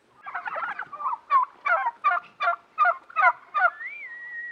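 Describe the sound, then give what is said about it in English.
A flock of farm-raised turkeys gobbles as they rush over toward people, in a rapid burst of overlapping, yelping calls, then a quick series of pulsed gobbles, ending with a thin rising whistle. Fairly loud, no talking. “The turkeys rush over, sounding more like a litter of puppies than big, fat gobblers.”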